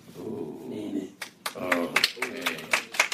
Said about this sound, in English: That applause was... That was like, if you look up smattering in the dictionary, it's 7 or 8 of you sitting around doing that.